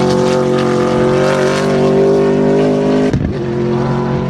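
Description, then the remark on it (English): A racing car engine, still being tested and not the final version, roars loudly and steadily at high revs, then briefly drops and surges back near the end, with no talking. “definitely a bit of meat in that one. A little bit different to the crisp supercar 5-litre V8 racing engines that we've become so accustomed to since this category began in the early 90s.”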